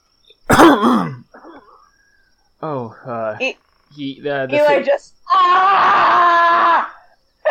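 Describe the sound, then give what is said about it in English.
A voice acts out harsh hacking coughs and throat clearing in several loud bursts, ending with a long, strained, rasping hack, with no other speech. “As you both say this, you hear an incredible hacking and coughing from about 15 feet away in the trees.”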